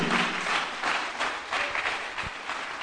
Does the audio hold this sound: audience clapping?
yes